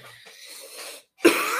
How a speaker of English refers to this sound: Coughing. And of course, it's just like the serious allergic reaction